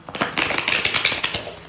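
A crisp run of rapid papery clicks and flutters, like a deck of cards being riffled and shuffled, lasting just over a second with no voices.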